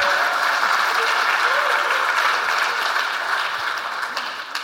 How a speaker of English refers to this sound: So, do we want to clap? Oh, okay.